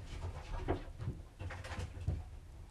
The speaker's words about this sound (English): Wow, chickens, that's crazy. I don't know what's going on with them in a minute.